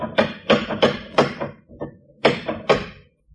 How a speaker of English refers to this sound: Maybe he didn't hear you. Anyone in the neighborhood would have heard that knock.